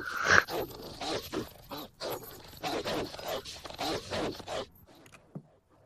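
A dog barks and growls over and over in rapid, rough bursts, fairly loud, continuing for several seconds before trailing off into quiet.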